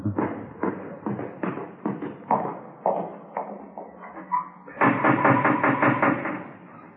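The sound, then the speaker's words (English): Police officers rap firmly on a house's front door, a steady series of hollow knocks, then a brief pause before a louder, quicker burst of knocking. “Try the front door, huh?”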